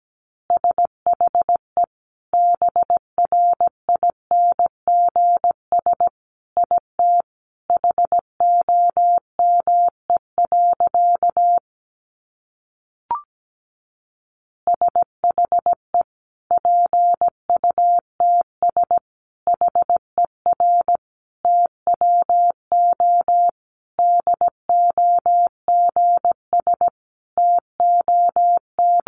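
Morse code at about 17 words per minute: a steady, mid-high single-pitch tone keyed in quick dots and dashes, broken by a short pause with a faint click before the sending resumes.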